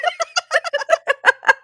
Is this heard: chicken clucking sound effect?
yes